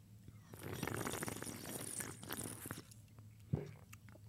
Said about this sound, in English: Fuck, I heard the gulp in that one too.